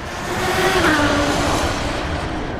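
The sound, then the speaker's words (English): A car engine revs loudly and accelerates, its droning pitch climbing and then easing back over a steady, rumbling roar. The sound stays continuous, with no voices. “Smarty Pants, did you know that the fuel used in rockets was tested in cars, rail vehicles, air gliders, and ice sleds in the 1920s?”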